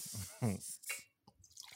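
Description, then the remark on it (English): A voice imitates liquid glugging out of a container: a few wet, gulping pops in quick succession, fairly loud, with faint mouthy clicks trailing off afterward. “This pouring is wearing me out. Because isn't that pour obnoxious? Glop, glop, glop, glop, glop.”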